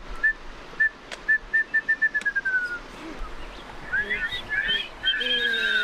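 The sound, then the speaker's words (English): A former biology teacher whistles a wrentit call to teach children: a run of short, evenly spaced notes speeding into a quick bouncing trill, followed by several overlapping whistles that sound like the children copying it, over faint background hiss. “He warms the kids up, teaching them the bird call for the wren tit.”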